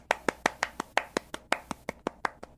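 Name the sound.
a few hand claps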